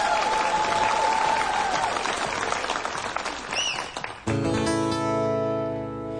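Loud, steady audience applause for a band appearing on a TV show fills the first four seconds, a dense crackle of many hands clapping, then fades as the band's sustained musical tones begin.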